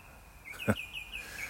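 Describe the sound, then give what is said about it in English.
Faint birds chirping, a thin run of high, repeated twittering notes over quiet background ambience, with one brief dull knock partway through. “Could be the sound of these birds, could be the sound of traffic.”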